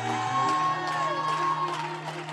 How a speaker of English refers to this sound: Would you clap your hands and throw your head back and just shout? Come on, why don't you shout like you're on the winning team here today?